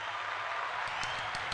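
A steady round of applause, dense, continuous clapping at moderate loudness with a few sharper claps standing out toward the end, no voices over it.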